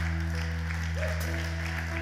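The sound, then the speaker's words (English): Applause from a crowd fills the space, a dense steady wash of many hands clapping together in praise to God over a low sustained hum, continuous and moderately loud throughout. “Come on, y'all. Let's give God a hand clap of praise.”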